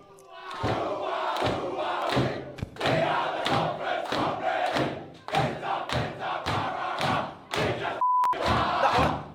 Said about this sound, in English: That's the players singing in the sheds.